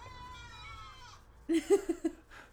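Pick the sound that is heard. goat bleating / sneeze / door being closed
goat bleating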